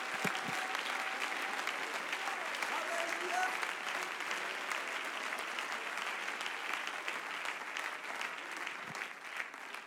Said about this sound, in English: Come on, somebody clap your hands and give the Lord praise right now.